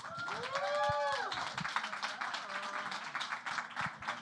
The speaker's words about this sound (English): I'd like to bring up our next moderator, Major. He is a dancer, talent, model, content creator. So please, warm round of applause for Major.